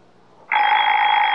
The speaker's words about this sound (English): Oh, baby sounds funny. That was Baby Ben. Thought our baby's name was Ollie. Baby Ben's our alarm clock, honey. It never forgets to get us up. We could forget to plug it in. Baby Ben doesn't need electricity, dear.